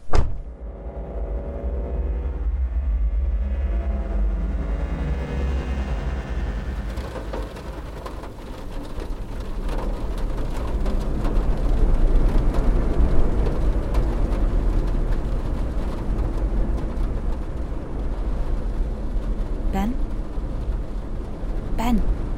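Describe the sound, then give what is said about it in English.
A heavy truck drives steadily on a long journey in freezing, rainy weather, with a constant low engine rumble and continuous rattling and clattering, loud throughout, with a few sharper knocks near the end. “We've been travelling for what feels like forever, and this truck rattles my teeth and my bones, and it's freezing.”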